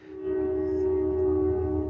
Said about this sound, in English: Oh, the train whistle. That is so great. Very plaintive. Fits wow, in. Wow, I love that.